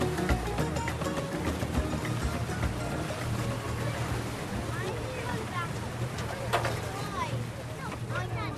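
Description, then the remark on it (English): A ferry boat engine drones steadily as the last ferry crosses Lough Corrib in County Galway to the island of Inchigill for the annual open-air mass, with water churning and splashing, light wind across the microphone and faint voices of people. “Finally, the last ferry boat comes over.”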